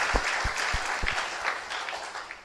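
A crowd claps together for the Lord Jesus in a steady wash of applause, with a few sharper, louder individual claps standing out irregularly against the dense, continuous patter.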